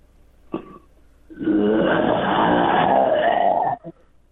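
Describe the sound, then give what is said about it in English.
A person imitates a lion's roar: a short throaty grunt, then a long, loud, rasping growl lasting about two seconds, ending with a brief huff. “I want to hear a lion's roar.”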